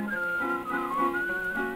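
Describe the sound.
A cheery whistled melody rises and falls in a steady tune over a strummed instrumental accompaniment, with the thin, hissy sound of an old 1924 recording.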